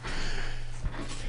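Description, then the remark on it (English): A breathy nasal sniff with a short snuffling burst partway through, set against a steady low hum and airy background noise; no one speaks. “Oh, man, sorry I keep sniffling.”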